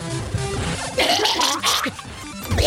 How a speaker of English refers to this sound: Turns out, just a cough. She's had a little cough.